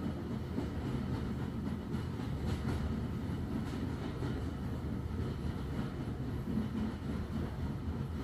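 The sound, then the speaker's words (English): A train rumbles steadily across a high arched railway viaduct curving around 120 degrees, a dense low-pitched roar with faint rhythmic clatter, continuous throughout, with no voices. “All to carry this magical train.”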